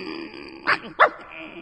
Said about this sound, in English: Call the dog off. Call him off. I can't, sir. Well, find someone who can. No, I could if I was permitted to. But my young lady has ordered the glass dog to bark whenever you call here.